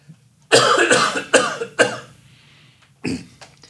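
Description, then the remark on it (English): A fit of loud coughing: three or four harsh coughs in quick succession, a brief pause, then one final cough, with no talking. “sorry, I'm going to cough again.”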